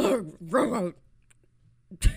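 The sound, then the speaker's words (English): A person voices 'RHUGT', the acronym of the show Real Housewives Ultimate Girls Trip, like a dog retching before it vomits: two strained, throaty heaves, a brief quiet gap, then a sharp harsh gag at the end. “She says it sounds like the noise her dog makes before her dog's about to throw up.”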